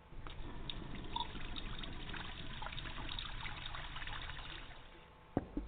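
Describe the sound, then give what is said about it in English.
A thin, steady trickle of water runs from a low-pressure tap in a flash house for several seconds, fairly quiet, ending with a soft clunk as it shuts off. “Flash house, but the water pressure sucks.”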